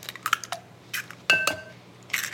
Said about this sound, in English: And then 2 eggs, I'll just crack them right in.